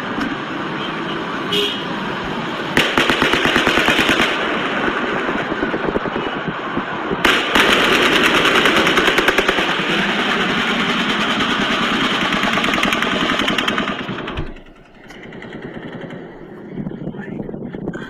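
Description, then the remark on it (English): Rapid automatic gunfire: a first report, then close fire in sustained, crackling volleys. The shots come in dense, rattling bursts for over ten seconds before cutting off, leaving faint background noise. “Number one, your problem is that you're hearing the report and then the close fire, and that's not the way that an echo would sound.”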